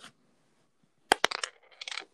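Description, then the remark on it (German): A die is rolled onto a hard table, giving a few sharp clattering knocks and a short tumbling rattle before it settles, fairly quiet, with no talking. “Weep, warte mal, ein Würfel. Ich würfel immer, okay?”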